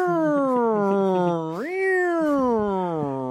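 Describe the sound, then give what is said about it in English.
A person's voice imitates a cat in a cop car meowing out the window as a siren, stretching one long meow into a siren-like wail that dips, swoops sharply upward, then slowly sinks again, loud with no other sounds. “The cat is driving the cop car, doesn't know how to work the siren, so just meows out the window.”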